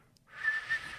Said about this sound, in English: I can't whistle. Like, this is me trying to whistle. Ready?